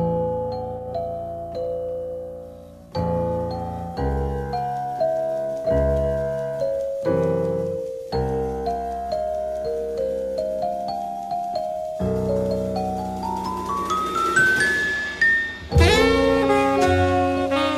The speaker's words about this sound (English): playing not the piano but the celeste, those bell-like tones in the introduction to the song.